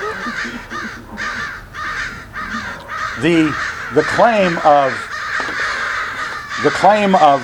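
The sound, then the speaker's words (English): A murder of crows on the top of a tree caws harshly and repeatedly, overlapping calls coming in bursts, some rising and falling in pitch, over steady outdoor background noise. “what you're hearing, if you're listening to this online, is a murder of crows on the top of the tree.”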